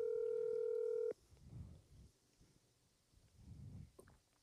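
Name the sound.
telephone dialing tones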